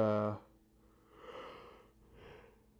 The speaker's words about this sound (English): Yawning.